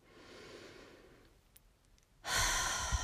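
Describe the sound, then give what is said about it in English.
A slow, soft breath drawn in through the nose, then a brief quiet pause before a louder, rushing breath out through the mouth begins. Clear, with no talking. “So breathing in through your nose.”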